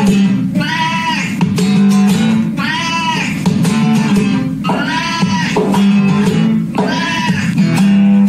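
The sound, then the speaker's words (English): A cat sitting on a couch in front of a microphone yowls in four long, wavering cries while its owner beside it strums steady guitar chords; both are loud, the yowls rising and falling almost like singing. “the cat is sitting on the couch in front of a microphone and his owner is right beside him looking at him, strumming the guitar”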